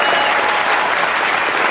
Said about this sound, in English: Give them a big round of applause, please.